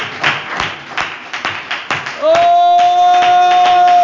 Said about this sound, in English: Put your hands together and clap with the Lord before you're seated and worship the Lord.